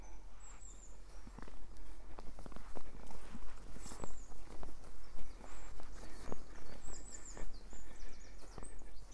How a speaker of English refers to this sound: And I've just come across some donkeys.